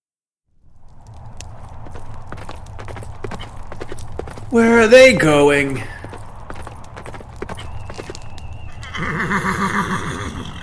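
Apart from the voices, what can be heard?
horses clip-clopping and neighing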